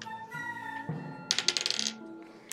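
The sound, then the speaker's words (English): Dice are rolled for a stealth check, clattering across a table in a quick rattling burst of hard little clicks that settle within about a second, over a faint humming tone, followed by one last sharp tap. “I'll roll a stealth check, and then I'll try to get in. Okay, roll your stealth.”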